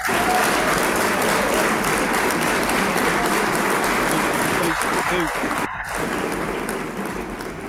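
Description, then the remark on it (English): Dense, sustained applause from a crowd, a steady loud wash of many hands clapping at once that holds level for several seconds before easing slightly, with a few voices mixed in. “Hey, that damn clap sound like … on stage.”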